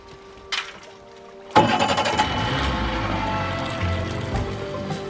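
A boat motor cranks and catches after a brief quiet stretch, then settles into a loud, steady rumble that runs to the end as the boat sets out on a ride to look at other docks, with no voices.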